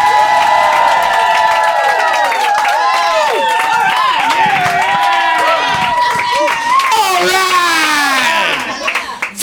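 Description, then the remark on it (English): A crowd at an Edinburgh Festival show bursts into loud, sustained, unrehearsed cheering and applause, with many overlapping whoops and shouts over dense clapping, holding steady for about nine seconds before cutting off. “with totally unrehearsed applause!”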